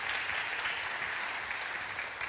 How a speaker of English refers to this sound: we'll let you give him a round of applause. Come on, come on, come on.